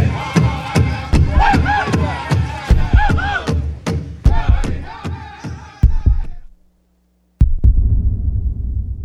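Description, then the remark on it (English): A drum beats in a steady, even rhythm, loud, under chanting voices for about six seconds before stopping; after a short silence, a dull rumbling noise begins. “The drum, it is a symbol of the heartbeat of Mother Earth.”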